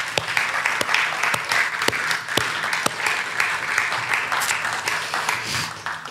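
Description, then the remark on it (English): An audience gives its pastors a round of applause, a dense wash of many hands clapping for about six seconds. A few sharper individual claps stand out, and the loudness holds fairly even throughout. “Can you just give them a round of applause, please?”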